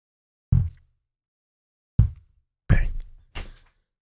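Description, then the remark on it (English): Four sharp, explosive sneezes, fairly loud, spaced unevenly with the last two coming quickly together, each a short breathy burst with no talking in between. “Excuse me. Bless you.”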